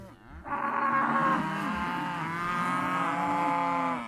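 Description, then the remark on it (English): A cow lets out one long, loud moo lasting several seconds, steady, with a rich droning tone and no talking over it. “Come on, cow.”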